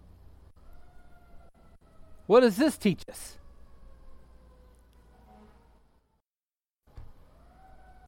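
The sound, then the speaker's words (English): An emergency vehicle siren wails faintly outside, a thin sustained tone drifting slowly in pitch, while a man speaks briefly over it. “this world we see, all this stuff, the sirens, everything we're hearing”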